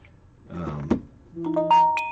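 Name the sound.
doorbell ringing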